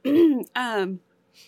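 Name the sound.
coughing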